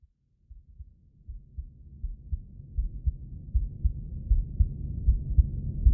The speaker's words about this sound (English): This is a recording of my heartbeat. I was thinking recently about why it is that we can't hear our own hearts beating.